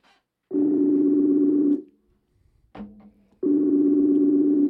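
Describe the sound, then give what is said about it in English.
A phone ringback tone sounds loudly, two long steady buzzing rings with a pause between them, and a brief click or noise in the gap. “Maybe I should shut that down while I was ringing, huh? Jamie, shut this phone down.”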